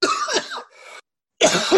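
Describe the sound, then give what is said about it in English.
Loud, harsh coughing fits: a rough burst of coughs with a raspy throat-clearing tail, a brief silence, then another hacking cough. No talking. “Have a really bad cough, man.”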